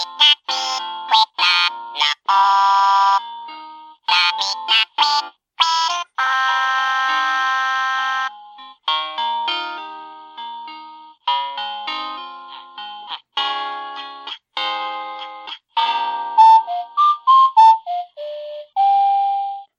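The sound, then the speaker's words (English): A Hallmark Christmas ornament sings a tinny electronic tune of short choppy bursts, with whistle-like tones and grunting sounds, ending in a descending run of notes. Loud, with no talking. “the cool thing you're gonna hear in the mic is that it sings to you, which I didn't even know about until we got it.”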